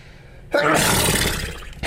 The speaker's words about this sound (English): Sneeze alert.